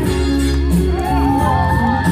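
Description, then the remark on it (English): A loud crowd at a rally cheers continuously, a dense roar of many voices with scattered whoops and shouts rising above it throughout. “Another cheer from the crowd.”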